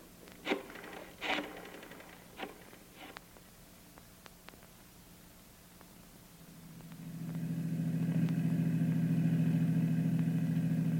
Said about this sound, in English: Want me to stay in the car? That's right. Keep the engine running.